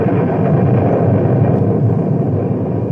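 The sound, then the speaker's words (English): Thunder from an electrical storm with lightning, heard from a swaying bridge over a river, rumbles in a deep, loud, continuous roar that stays heavy and steady throughout, without a sharp single crack, and no voices are heard. “Then the electrical part of the storm hit us.”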